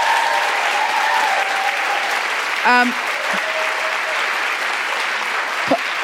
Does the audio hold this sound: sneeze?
no